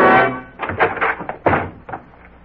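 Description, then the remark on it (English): FBI agents rush and burst open the bedroom door of kidnapper Frank Hadley: a loud crashing impact, then a quick run of heavy thuds and bangs that fade into scattered knocks. “And then, in a quick movement, they rush the door to Frank Hadley.”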